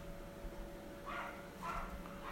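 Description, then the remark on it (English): A small dog yaps twice in quick succession, high-pitched, in a neighbourhood where a community of people live, over a low steady background hum with no one talking. “But here, there's a community of people living around and all you can hear every fucking morning is this little fucking thing yapping its fucking head.”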